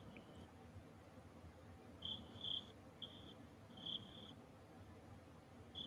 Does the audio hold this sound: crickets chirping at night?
yes